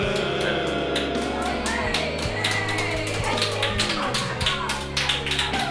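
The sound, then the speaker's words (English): Sparse, irregular hand claps from a lone person, the host's mother, crisp and light, tapping along over a steady bed of sustained music without any crowd roar, in a show broadcast from a basement. “Oh, thank you, Mom, for that rousing round of applause.”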